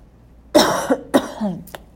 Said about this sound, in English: And as you hear me cough always on this podcast, I'm believing that the universe is going to help me kick these allergies so that I get some kind of relief from the scratchy throat and the sinus stuff, because it's not fun